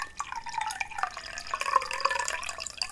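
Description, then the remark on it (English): Water pours steadily into a container while making a potion, a continuous splashing and trickling with a slowly rising pitch as it fills, no voices present. “So I'm just going to pour some water in here.”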